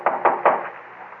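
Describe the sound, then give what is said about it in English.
Three sharp, loud knocks on a door in quick succession, with a short hollow resonance trailing after the last one. “Don't open that door. Why not? Well, aren't you going to look out the window first? It might be the cops.”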